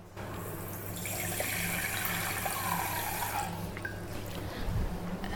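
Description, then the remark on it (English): Water pours steadily into a measuring cup, about half a cup, for a tapioca flour recipe, for about three seconds, the splashing tone rising as it fills, then tapers off into quieter background noise. No one speaks. “So that is the water.”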